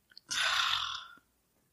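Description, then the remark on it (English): A single breathy, hissing fart lasts just under a second, holding a steady airy tone before cutting off, with no talking around it. “No, he farted.”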